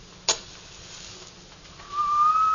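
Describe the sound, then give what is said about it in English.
A match is struck with a short sharp crack, then a quiet hiss as it flares. After a pause, a single clear, steady second whistle rises in softly and holds on one low-ish note, drifting slightly upward until the end. “As the match flared, I heard a low, clear second whistle.”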